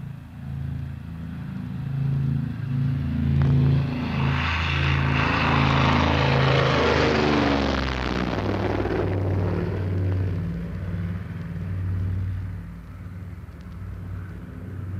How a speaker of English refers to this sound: Boston takeoff, and in a flash we're over the sea and turning back as we climb.